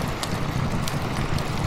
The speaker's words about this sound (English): See, this is what happens when you play rain noises.